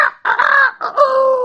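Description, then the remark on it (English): A rooster crows loudly, a single full cock-a-doodle-doo with short breaks between its syllables and a long drawn-out final note. “The rooster crowed.”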